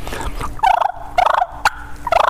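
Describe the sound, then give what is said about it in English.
Aggressive turkey fighting purrs, made by a caller imitating the bird by rolling the tongue and blowing hard: three loud, rattling, rolling bursts separated by short pauses, with a sharp pop between the second and third. “But that's what I'm going to do, the fighting purrs. And fighting purrs, you just roll your tongue and blow hard.”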